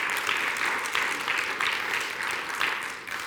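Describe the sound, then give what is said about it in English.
A church audience claps steadily for the pastor during a morning service, a dense, even patter of many hands with slight swells, fading a little at the end. No one speaks over it. “Come on, you can give him a good round of applause.”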